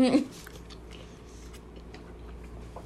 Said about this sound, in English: Give me a second to chew.